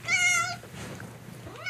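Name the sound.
cat meowing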